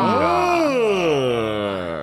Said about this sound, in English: You tired, dude? I'm waking up. I'm waking up. It's a new year. I'm waking up. Oh. Okay. Typically, yawning is associated with being tired. Well, no, it's actually gasping for new oxygen.